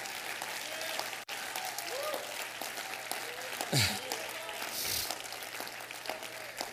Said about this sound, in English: If you know what I'm talking about, clap your hands to the Lord.